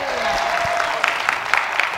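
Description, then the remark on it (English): A church audience claps together for the Lord in a steady, sustained burst of applause, the dense patter filling the whole moment with a few sharper accents rising above the wash. “Give the Lord a clap offer.”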